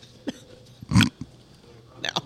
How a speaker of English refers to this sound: Was that another snort?